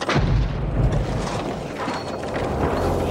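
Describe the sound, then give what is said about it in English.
A loud, rumbling blast from a car bomb, a pipe bomb planted under the driver's seat of a car, fills the whole stretch: heavy low booming with crackling, clattering debris layered on top, sustained rather than fading quickly, with no voices. “But Backhouse never expected his wife to survive the explosion.”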